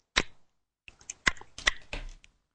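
Hummingbird clacking: a quick, irregular run of about six or seven sharp, bright clacks and clicks with short gaps between them. The clacks are moderately loud and stand alone with no talking.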